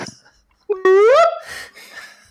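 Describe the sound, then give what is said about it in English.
A voice imitates a Bigfoot call, like the weird noises in Bigfoot videos: a short grunt, then a loud, rising wail that swoops upward for about half a second before breaking into breathy, rasping noises that trail off. “Or whatever those weird noises are in those videos.”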